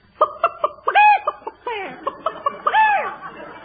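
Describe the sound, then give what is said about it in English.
An impressionist imitates chickens cackling on a farm in the morning, with a quick run of about a dozen fairly loud clucks that swell into drawn-out squawks partway through, and no other talk. “And the cackling of the chickens.”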